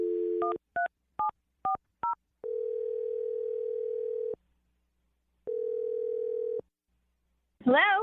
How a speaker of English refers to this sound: We're going to dial the phone number for you right now, okay? Great. All right, here we go.